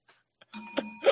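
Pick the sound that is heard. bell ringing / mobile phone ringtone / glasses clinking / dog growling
bell ringing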